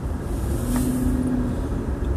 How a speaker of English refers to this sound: Fuck, I could be riding today, but I'm in the truck right now.